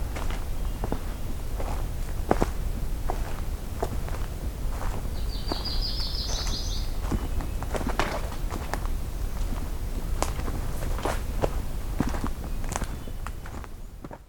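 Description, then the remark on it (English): Steady footsteps crunch along an outdoor trail near a wetland at a walking pace, fairly loud, with a brief bird chirping in the background partway through. “Well, I'm heading back on the trail, away from the wetland now.”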